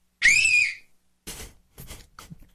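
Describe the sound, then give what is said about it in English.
A person gives a single loud, piercing whistle to call someone, ringing out briefly and sliding slightly in pitch, followed by a few softer, breathy rustling bursts. “Let me call him with a loud whistle.”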